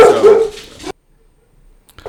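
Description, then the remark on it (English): Dogs bark loudly at night in a harsh burst lasting nearly a second, then fall quiet before another bark starts up at the very end. “See, it's like these dogs have high anxiety tonight.”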